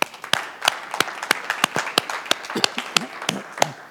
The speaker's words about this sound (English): Once again, happy Mother's Day. To all the mothers. If you're not a mother, please clap with me for all the moms.